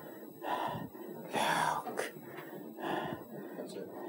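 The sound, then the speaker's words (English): Heavy, labored breathing from Yoda in a new take: a series of four or five raspy, gasping inhales and exhales in an uneven rhythm, fairly loud, with no talking. “Close up on Yoda. Breathing.”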